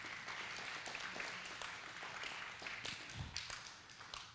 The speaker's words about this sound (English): That's all right. You can clap if you want to.